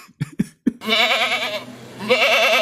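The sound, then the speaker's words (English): A goat bleats loudly, a long wavering cry that fades and then rises again, preceded by a few short sharp thumps or grunts. “I think they're real. I think so. I've met goats. Goat watch.”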